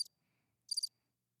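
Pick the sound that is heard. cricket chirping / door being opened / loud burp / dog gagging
cricket chirping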